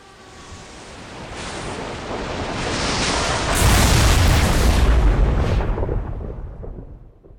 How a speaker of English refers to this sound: Pillar of lightning descended. Sand turned to glass, the waves evaporated, and everything else became ash.